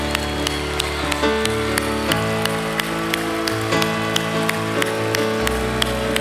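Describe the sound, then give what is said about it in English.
An audience in Gamecock country claps steadily in time, sharp regular claps riding over sustained musical chords that shift underneath, with no talking. “I've never clapped this much in Gamecock country.”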